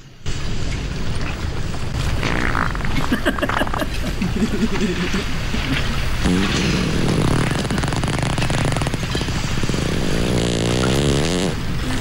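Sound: fart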